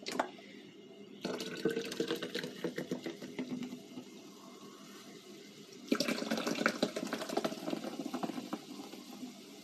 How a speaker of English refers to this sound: I always wash off my aluminum cans before opening this. You never know where these have been stored. I mean, I don't mean to be weird, but really, my trust in the cleanliness of everything is kind of low.